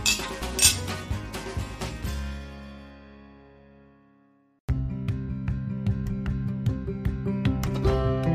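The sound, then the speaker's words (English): Several bright glass clinks ring out close together, like a toast, then fade into a long shimmering decay. After a brief near-silence, a steady, rhythmic tonal passage that sounds like music begins. “Well, I think it's a cheers to that. Let's. Cheers.”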